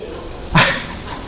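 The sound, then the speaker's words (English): A person imitates a dog with a single short, sharp bark rising out of quiet, moderately loud. “But as soon as you enter into heaven, bark, bark, bark, bark.”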